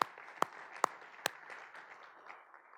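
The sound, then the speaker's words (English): Audience applause: four loud, evenly spaced claps ring out over a softer wash of crowd clapping that continues and gradually thins out. “And I want you all to join me in some applause.”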